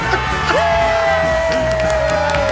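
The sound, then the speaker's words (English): A small studio audience of a local cable access talk show applauds vigorously with cheers and whoops, a long sustained whistle cutting through the steady clapping, as a small black curtain parts and the host walks out. “The small but mighty audience applauds vigorously as a small black curtain to the left of TV's podium parts, and Mr.”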